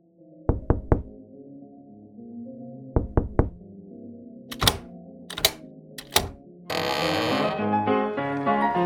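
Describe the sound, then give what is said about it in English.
A secret knock pattern on a door with a peephole at the back of a barbershop: two quick bursts of three raps, then three slower, louder knocks, all over a soft music bed that swells fuller at the end. “So there's a door in the back of the barbershop, and what we do when we get there, there's like a little peephole so that they can see in there, but there's a knock that we do.”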